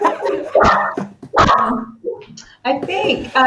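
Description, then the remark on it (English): Dogs bark in two loud, sharp bursts, with further yips and harmonic barking near the end, while people talk underneath. “I hear your dogs agreeing.”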